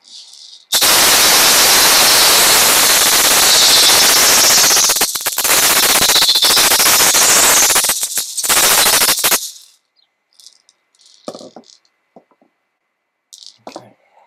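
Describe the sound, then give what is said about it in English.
A loud, dense crackling fire pops and snaps steadily for about nine seconds, then stops abruptly, leaving only a few faint scattered crackles. “We have our fire.”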